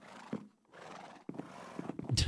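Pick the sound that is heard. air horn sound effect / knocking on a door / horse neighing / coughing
horse neighing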